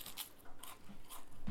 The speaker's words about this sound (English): It's what people want to hear. A nice palate cleanser. Chewing.